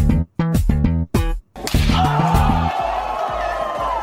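A punchy theme tune opens with a few loud, staccato chord stabs separated by brief gaps, then swells into a fuller, brighter sustained passage over a steady pulsing bass.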